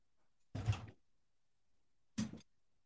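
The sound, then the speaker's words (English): A door being opened for someone waiting outside: two short, fairly loud clunks about a second and a half apart, in otherwise quiet surroundings with no talking. “my daughter was here and she was outside waiting at open the door.”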